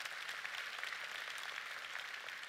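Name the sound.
audience applause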